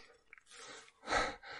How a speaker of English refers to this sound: Don't mind all the crunching that you'll hear.